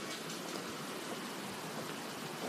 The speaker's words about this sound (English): I think I'll go back outside and see if I could catch some more rain for you. End it with a little spring rain.